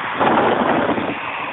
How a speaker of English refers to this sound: I'm going to cover the phone now, just so it's not as windy. That's probably why it sounds all weird.